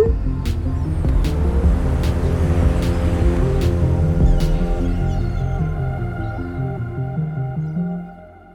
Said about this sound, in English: This is not the sound of a stream running through the mountains. It's water from a leaking pipe trickling down a stairway.